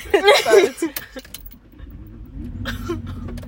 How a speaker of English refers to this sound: Okay, oh god, everyone so here, listen to my car.